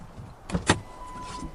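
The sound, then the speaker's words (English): Two quick mechanical clunks close together, like a car door latch releasing and swinging open as people get out of a car, followed by a faint steady chime or hum in an otherwise quiet interior. “Well, let's go ahead and get out of the car.”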